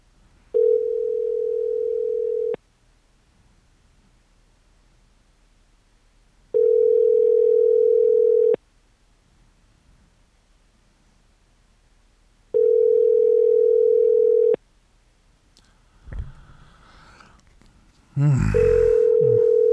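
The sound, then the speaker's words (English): A phone call to a mobile phone ringing: a steady, loud electronic tone sounding in roughly two-second bursts with long silent gaps, repeating four times, with a brief burst of muffled noise before the last ring. “Let me call him again. On the mobile.”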